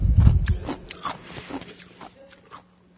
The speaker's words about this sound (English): I do have the big soda again with the ice. I'm doing my very best not to chew on the ice. But I love the ice.